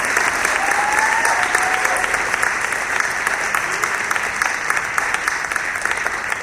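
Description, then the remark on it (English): A large crowd of schoolchildren in an echoing gym claps steadily and loudly for several seconds to welcome an all-star player from the Miracle League of Michigan, with a few faint shouts and whoops rising over the dense applause. “Boys and girls, how about a round of applause for”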